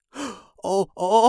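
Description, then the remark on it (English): A scientist's fairly loud, breathy vocal gasp, with a soft airy first burst followed by two sharper voiced catches of breath in quick succession, performed by a single voice with no words. “The scientist gasped.”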